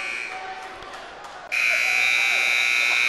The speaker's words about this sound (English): and there's the buzzer.